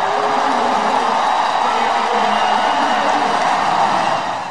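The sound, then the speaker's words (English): A sustained, dense roar from a large stadium crowd at a White Sox baseball game as Hendricks comes into the game, loud and steady throughout with a broad wash of cheering voices, easing slightly at the very end. “You hear the crowd roar as he comes into the game.”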